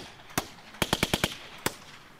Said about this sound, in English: This is the hardest beat anybody's ever heard. It's made out of gunshots. Gunshots on a beat.